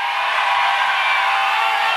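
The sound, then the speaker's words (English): A large audience screams and cheers in a loud, continuous roar of many voices, sustained evenly for about two seconds without any single voice standing out. “Scream if you believe it.”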